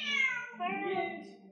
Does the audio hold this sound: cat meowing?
yes